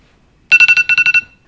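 A timer alarm goes off at the end of a ten-second moment of silence, with a quick run of eight sharp electronic beeps in two groups of four, loud, with no talking.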